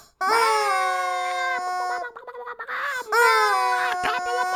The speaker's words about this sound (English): Charlie Chicken, would you knock it off? You little knucklehead. I can't take this chicken with me anywhere